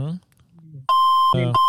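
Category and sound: signal or alarm, electronic beeping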